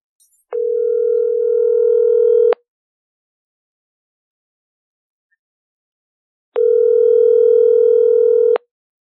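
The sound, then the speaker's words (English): Two long, steady electronic ringback tones, each about two seconds, separated by a long silent pause, like an outgoing phone call ringing on the line; fairly loud and clear, no voices. “All right, here we go. It's dialing.”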